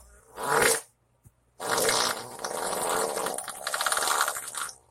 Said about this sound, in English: Take the fart noise off.